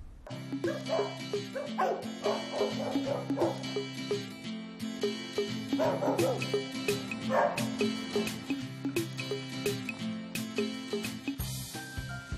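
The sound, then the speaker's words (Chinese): A large German Shepherd police dog barks in two rapid bursts of repeated, fairly loud barks, with quieter yips in between, over a steady low background hum. Nobody speaks. “德国牧羊狗其实就是我们俗称的狼狗来的，也是我们警犬队常用的警犬之一。”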